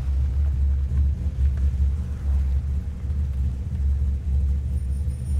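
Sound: car engine rumbling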